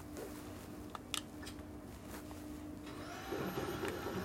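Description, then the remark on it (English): A vacuum cleaner, used to suck up a spider, runs with a steady droning hum, a few sharp clicks and rattles cutting in early on, then the motor noise swells a bit louder toward the end. “Well, what if I suck it up in the vacuum?”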